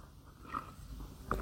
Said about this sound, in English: Sip of tea there.